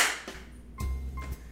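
A single sharp hand clap rings out at the start, made to sync Camera A and Camera B, followed by a couple of duller low thumps, with no voices.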